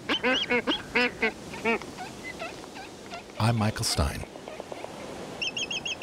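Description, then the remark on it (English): Black-footed albatross calls ring out in a repeated series of harsh, honking whistles, broken by a louder noisy burst partway through; a man speaks briefly over them. “the black-footed albatross collects squid and masses of flying fish eggs with its long, hook-tipped bill”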